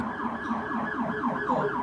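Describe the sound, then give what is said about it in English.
An emergency vehicle siren outside wails in quick, repeated rising and falling sweeps, about four cycles in under two seconds, steady and fairly loud with no voices over it. “That means somebody's car is like now a cube. That means we need like Jaws of Life crazy ass.”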